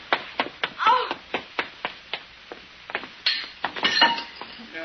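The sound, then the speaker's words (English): Pliers bang on a metal pipe up above: a quick, uneven series of about fifteen sharp clanks, some leaving a brief metallic ring, loud and hurried. “Fine, I hit the pipe up above instead of the window.”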